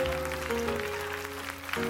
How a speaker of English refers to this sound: Praise the Lord, everybody. Can we clap our hands, everyone, and give the Lord praise?